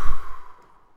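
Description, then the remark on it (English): A single slow, audible exhale during a breath-prayer exercise, a soft breathy sigh that fades out after about half a second, leaving quiet. “And what I mean by a breath prayer is a short, portable prayer that we can pair with our breathing.”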